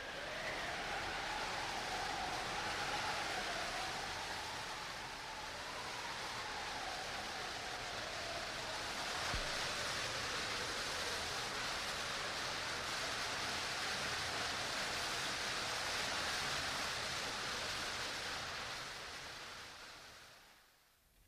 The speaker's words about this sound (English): The storm rages more shrilly through space now, and far below is heard the thunder of the waterfall.